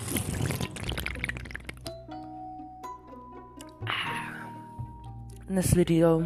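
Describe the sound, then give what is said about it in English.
Sipping a michelada from a tall, fairly full can: wet, slurping liquid sounds in a few bursts at the start, midway and near the end, with steady muffled vocal tones running between the sips. “So you're gonna hear some sipping.”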